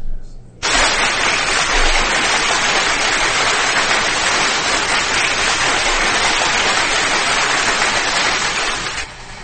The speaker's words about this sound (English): Can we give a clap for those both ladies, please?